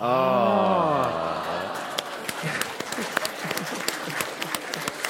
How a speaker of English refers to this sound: Well, you know what? That applause probably says something.